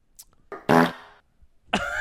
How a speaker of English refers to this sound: Farting, actually. No joke.